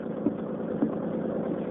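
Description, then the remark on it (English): A motorboat engine drones steadily, a continuous low rumble with a couple of faint knocks, and no voices. “There's nothing out of Cod Harbor can outrun this boat of mine.”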